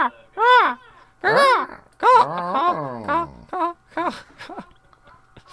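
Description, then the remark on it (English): A voice imitates a hawk's cry with a string of shrill, wavering screeches, the first few long and loud, then several shorter, quicker yelps trailing off. “Just recording a bird going...”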